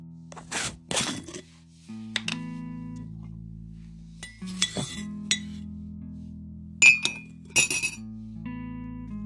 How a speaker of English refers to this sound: Add 1 teaspoon instant coffee to a mug.